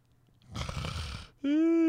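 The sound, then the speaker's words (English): A drawn-out yawn: a long breathy inhale gives way to a loud, sustained voiced groan that rises slightly in pitch and carries to the end. “You can't be yawning.”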